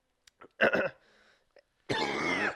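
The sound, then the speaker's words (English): A loud burst of coughing and sputtering from someone choking on saliva, with a short wheezy gasp between harsh coughs and a long raspy throat-clearing hack at the end. “I choked on my spit.”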